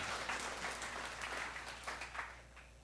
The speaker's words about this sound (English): Oh, one claps, everybody claps. Come on.